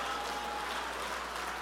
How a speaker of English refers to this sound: Come on, jump to your feet and clap your hands and say, God's about to reverse this in my life.